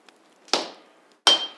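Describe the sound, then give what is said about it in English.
Two sharp metallic hammer strikes ring out about three-quarters of a second apart, each a bright clang with a lingering ringing tail, loud with no voices, as heated pieces of tamahagane steel are hammered flat at a forge to make a katana. “Heat from the forge and constant hammering flatten the pieces into the building blocks of the new weapon”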